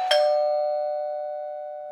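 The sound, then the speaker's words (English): A single front-door doorbell chime strikes once with a bright attack, then rings out as a steady mid-pitched tone that slowly fades for nearly two seconds, with no voices. “Okay, we had to pause there because someone was at the fucking front door.”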